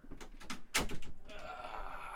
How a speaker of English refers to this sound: Wait, let me close the door. It's gonna be so hot in here.